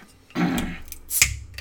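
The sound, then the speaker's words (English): A bottle of wheat beer is pried open with a church key: a brief scrape and rustle of metal on the cap, then a sharp, bright pop with a quick hiss of escaping gas. “Church key here.”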